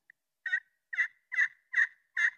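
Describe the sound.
A series of five turkey yelps made by a person on a turkey call as a demonstration, in a steady, evenly spaced rhythm, each note short and raspy, heard clearly with no talking and silence between calls.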